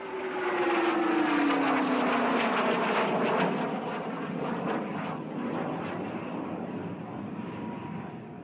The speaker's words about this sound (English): But as he stands next to Klein's grave, some jets fly overhead. Hey, what kind of aircraft are those?